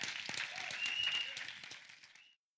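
An audience claps hands together in praise, dense, steady applause for about two seconds, a brief thin high tone rising above the clatter before the clapping cuts off abruptly.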